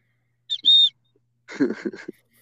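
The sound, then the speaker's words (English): A single short, shrill whistle blast at a steady high pitch, used as a buzzer in a quiz round, followed a moment later by a person speaking briefly. “I got a whistle.”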